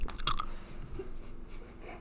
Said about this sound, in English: not allowed to eat into the mic on this